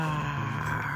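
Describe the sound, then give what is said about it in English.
A person growls out a long, loud roar like a monster, imitating the wild things while reading aloud a story of Max and the wild rumpus, one sustained low, rumbling vocal sound held steady for about a second. “Roar.”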